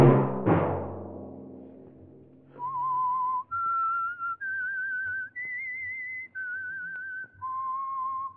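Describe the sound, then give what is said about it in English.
After a struck chord rings out and fades, a lone whistler plays the signature tune of the radio program The Whistler, six long, wavering notes that climb and then fall back, clear. “Let that whistle be your signal for the Signal Oil program, The Whistler, each Sunday night at this same time.”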